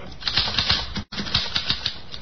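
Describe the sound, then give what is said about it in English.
A typewriter clacks away in quick, uneven bursts of sharp keystrokes, with a brief pause midway before the rapid typing resumes, fairly loud. “Here's a typewriter.”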